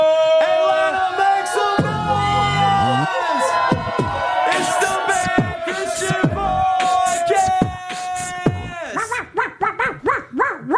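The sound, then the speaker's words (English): A large live audience on a Friday night in Atlanta cheers and shouts loudly and continuously, with whoops and bark-like yelps rising over the roar, then breaks into rhythmic, chant-like bursts near the end. “Yeah, this is a great crowd.”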